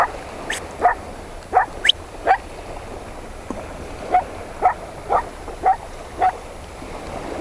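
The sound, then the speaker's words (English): A herding dog barks repeatedly at a steady pace on a field with many young cows, about a dozen sharp single barks spaced under a second apart, over a soft, constant outdoor background. “My dog is barking.”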